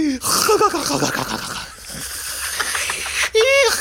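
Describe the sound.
A voice imitates the loud, raspy snoring of goblins up a staircase, with wheezy, gurgling snorts and a rising nasal whine at the end, harsh, with other voices chiming in.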